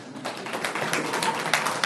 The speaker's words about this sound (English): All right, go sit down. Thank you. Everybody get a round of applause.